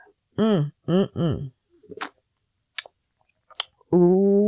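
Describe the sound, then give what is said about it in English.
A few wet mouth clicks and a quick slurping sip from a drink, set between short hummed vocal sounds at the start and a sustained voiced sound at the end. “Let me get a sip on that one”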